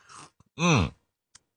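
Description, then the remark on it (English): A brief airy slurp of coffee taken for dramatic effect, then a loud, drawn-out satisfied "ahh" with a sliding pitch, ending in a couple of faint clicks. “That was a dramatic effect cup of coffee.”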